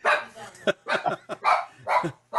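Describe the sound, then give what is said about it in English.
A dog barks repeatedly in quick, uneven bursts, about six sharp, loud barks, with short gaps between them and no other sound competing. “So, my dog's barking.”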